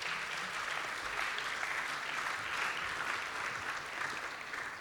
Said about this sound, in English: Just a final wee round of applause and we're going to sing.